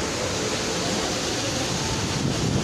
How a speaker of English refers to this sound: There are waterfalls. One of my favorite things in the world is the sound of water doing any, making any kind of sound. These waterfalls.